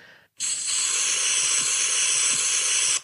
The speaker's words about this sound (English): That was just the sound of an aerosol self-tan being applied to someone's skin. So nothing wrong with that.